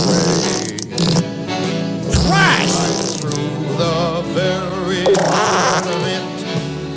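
Loud, drawn-out fart sound effects play one after another, their buzzy tones wobbling and bending in pitch over several seconds, with a dense, busy backing underneath.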